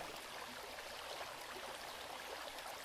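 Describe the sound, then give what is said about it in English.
A steady, continuous rush of flowing water, like a stream running over rocks, with a bright hissing texture that holds even throughout and no voices present. “when properly channeled, this flowing water and wind symbolizes intense spiritual vision that offers renewal for the world.”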